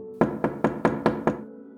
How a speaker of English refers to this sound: Blueberry, you walk up, knock on the door.